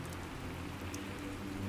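Steady rain falls in a continuous, even wash of hiss and patter, with a low rumbling undertone and occasional brighter droplet taps. No voices are present.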